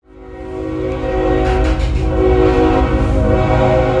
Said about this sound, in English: There's this train called La Bestia that runs from the south end of Mexico all the way to the north. And that train passes through my grandma's house at any hour at night.